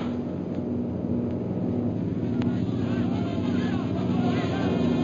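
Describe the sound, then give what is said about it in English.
A loud, steady engine drone from low-flying airplanes fills the air without letup, a deep rumbling hum with a slight wavering whine layered on top. “Look how low they're flying.”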